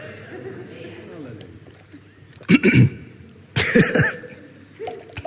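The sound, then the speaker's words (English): Two loud coughs about a second apart, harsh and spluttering, from a speaker coughing after taking a drink of water, rising out of a quiet, murmuring background. “Excuse me, that's just a water cough, not a other cough.”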